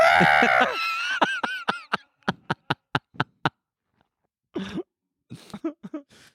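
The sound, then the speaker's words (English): A person lets out a loud, wavering scream imitating a goat, then a rapid run of short, sharp vocal bursts and a few rougher cries. “Goats do those screams.”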